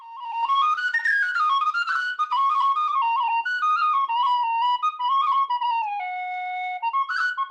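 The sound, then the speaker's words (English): A very high, bright F sharp cocobolo wooden whistle plays a lively run of notes with rapid ornaments and short breaths between phrases, fairly loud, with no talking. “So it's an olive wood E and an F sharp Cocobolo. These are Chris Abel's little wooden fellas. So super high.”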